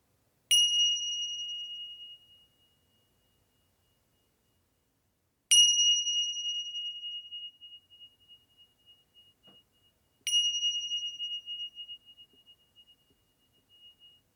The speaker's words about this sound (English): I'm going to lead us through the pause, relax, open, or PRO meditation. And so our meditation will begin at the sound of the bells.